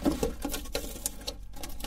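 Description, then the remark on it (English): A safety seal being peeled off a 16-ounce bottle of African Paradise Brightening Body Conditioner, a rapid series of small scratchy crackles and clicks, fairly steady and irregular, with no voices. “Removing the safety seal.”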